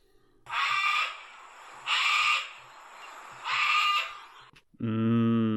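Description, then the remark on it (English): Wild parrots make their natural calls, not mimicry: three harsh, raspy squawks at an even pace, then one louder, more tonal nasal call. The calls carry clearly with no talking. “But have you ever considered that in the wild, parrots don't mimic anything. They just make parrot noises.”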